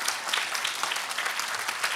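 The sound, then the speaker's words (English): A round of applause from a group for people who have just talked about themselves in front of them: steady, dense clapping sustained throughout with no pauses, moderately loud and without speech. “All right, everybody, give these folks a round of applause.”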